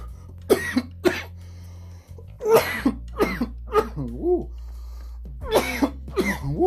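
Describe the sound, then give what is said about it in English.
A loud coughing fit after taking a hit from a bowl of weed: harsh hacking coughs come in quick clusters of two or three with brief gaps, some trailing into a raspy voiced wheeze, over a steady low hum. “You know, I can't start a podcast without me coughing, really.”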